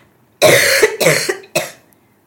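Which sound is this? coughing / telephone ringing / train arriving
coughing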